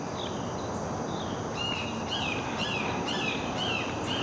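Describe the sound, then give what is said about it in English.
A hawk calls over and over, a series of thin, high, slurred cries repeating every half second or so, against a steady outdoor wash of background noise. No one speaks. “That hawk's getting after it today.”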